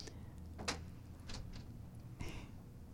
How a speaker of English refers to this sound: If you hear a bunch of, oh, there he comes in the door.